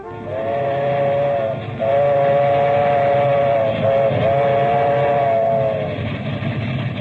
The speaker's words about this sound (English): Well, Mamma Mia, any minute now, trains are going to be in a grand central station. And then I'm going to be in New York.